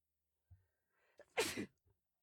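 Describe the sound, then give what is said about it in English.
A single loud sneeze, preceded by a short sharp inhale and followed by a faint breath, with no talking during it. “Bless you.”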